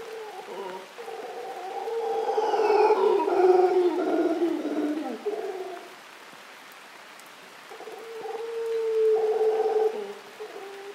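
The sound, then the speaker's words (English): A troop of golden-mantled howler monkeys roars in long, overlapping moaning calls that swell, fade, then rise again. They call from the treetops of a cloud forest in Rincon de la Vieja National Park, northwest Costa Rica, over a steady hiss of falling rain. “In the treetops, a troop of golden-mantled howling monkeys calls to each other across the cloud forest.”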